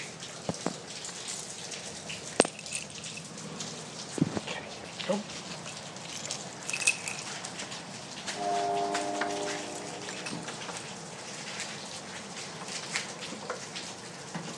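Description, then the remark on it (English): Steady rain hisses outside in northern Louisiana, with scattered sharper drips and splashes standing out, and a brief low humming tone partway through. “I almost got soaked by the rain.”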